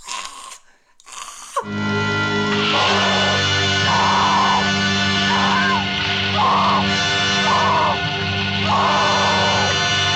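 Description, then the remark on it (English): A woman's muffled scream as she is smothered with a pillow over her face, loud and sustained for several seconds, swelling in a series of strained, pulsing bursts after a short noisy opening. “Because we get this scream from … that's like...”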